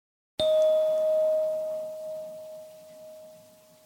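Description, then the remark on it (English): A single chime strikes suddenly and rings on as a steady, clear high tone that slowly fades away over several seconds during a mindfulness listening practice, with no talking. “Zip-up, Tic-Tock and Fading Tone”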